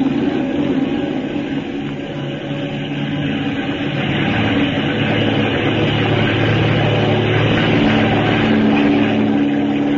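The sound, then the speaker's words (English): A propeller plane's engine roars loudly and steadily, a dense droning rumble with a throbbing low hum, as the aircraft revs up and takes off from an aircraft carrier. No voices are heard. “I don't see how you fellas get off a flat top so fast.”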